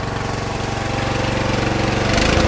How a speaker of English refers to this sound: I have an amateur rig that'll operate off 12 volts. Why couldn't I just operate it off the lawnmower here and use it as an emergency generator? Let's run the engine on up a little faster.